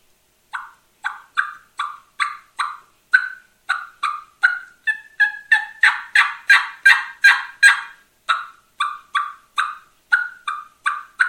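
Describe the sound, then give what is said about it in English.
A rapid series of sharp-edged turkey hen cutts played on a turkey call to imitate hen turkeys for gobblers, about twenty loud clucks in an uneven, excited rhythm with no talking. “So what I did is, when, as far as my cutting or anything like that, I noticed that the hens was making more of a noise like this.”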